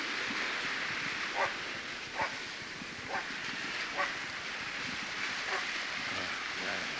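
A dog barks about six times at uneven intervals over a steady wash of wind or water noise. No one speaks.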